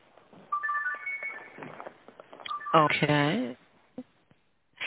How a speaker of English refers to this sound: Okay, that's your phone. I'm sorry, I'm going to turn it down here. That's okay. This is live radio. I couldn't even find it for a minute.